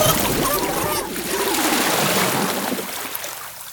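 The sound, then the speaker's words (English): Water splashes and sloshes noisily for a few seconds, a broad wash of spattering that stays fairly steady before tapering off at the end. “What are you doing with that water? Stop with the water.”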